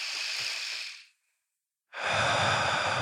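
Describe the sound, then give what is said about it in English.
A slow, deep breath drawn in, a brief pause, then a long audible exhale, breathy with no talking. “You haven't consciously thought of your breathing, or maybe you have. I've thought of it a few times during this podcast. But right now we can all choose to.”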